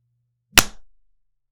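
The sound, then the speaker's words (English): A single sharp hand clap, loud and crisp, with a quick bright attack that fades out within about half a second; no voices accompany it. “Ooh, that was a good clap.”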